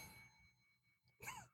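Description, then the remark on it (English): A faint bell ring with a thin, lingering tone that slowly fades, then a brief, louder dog whine or yelp near the end. “That was the faintest bell ring.”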